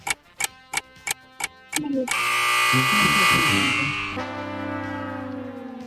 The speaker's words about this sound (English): Shot clock went off, bro.